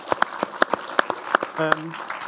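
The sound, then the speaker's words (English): Scattered applause from a small audience for the show's voice director and editor: sharp, irregular claps ring out over a couple of seconds, with a short voiced call or whoop rising briefly among them. “over there, who deserves a round of applause.”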